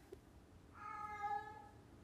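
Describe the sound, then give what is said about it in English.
A cat lets out a single drawn-out meow lasting about a second, fairly soft, with quiet background noise around it and no talking. “What the fuck are you doing, cat?”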